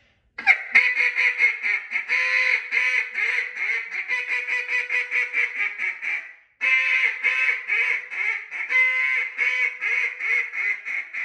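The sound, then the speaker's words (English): A duck call blown in a fast, insistent string of loud quacks that run together, sped up and louder as when ducks are flying off, breaking off briefly partway through before resuming just as rapidly. No one speaks. “Pick them up or speed it up, get louder as the ducks are flying off.”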